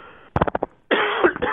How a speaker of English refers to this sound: I apologize for coughing at exactly the time I was supposed to say hello.